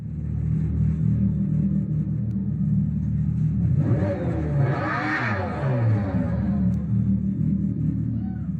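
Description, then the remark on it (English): An artificial car engine sound piped into a Dodge vehicle drones with a steady low rumble, then revs up midway, its pitch climbing and falling back before settling into the continuous hum again; the sound is not tied to the vehicle's motion. “but what was wild was they pipe in the sound, and the sound isn't even relative to the motion of the vehicle.”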